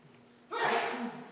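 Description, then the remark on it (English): A single sudden sneeze bursts out after a quiet moment, a sharp breathy blast that trails off quickly, moderately loud. “Bless you.”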